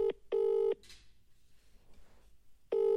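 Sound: telephone dialing and ringing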